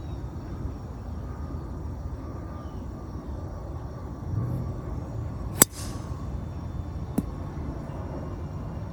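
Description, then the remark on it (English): A golf driver smacked against the tee box: two sharp, hard impacts about a second and a half apart, the first louder, over a steady low rumbling background with no voices. “That extra thud that you heard at the end of my drive? Well, that would have been me smacking my driver on the tee box because my drive went errant to the right hand side of the fairway into the rough,”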